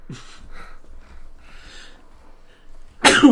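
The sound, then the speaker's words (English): A single sharp, loud sneeze bursts out at the very end, after a few seconds of soft breathy inhales and quiet rustling. “Bless you. Excuse me.”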